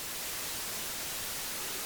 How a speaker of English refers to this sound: uploaded a 10-hour-long video of white noise to YouTube